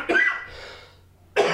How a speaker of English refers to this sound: You all right there? I don't have a cough button.